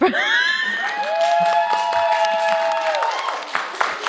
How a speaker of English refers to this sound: All right. So everybody vote by applause. All right. We're voting first for Jews.